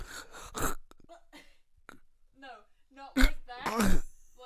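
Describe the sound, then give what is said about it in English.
Someone vocally imitates a snore that catches into a choke: a few rough, raspy breaths and throaty gurgles, then two loud, strained choking bursts near the end. “Sometimes your snore just catches and you just choke on it.”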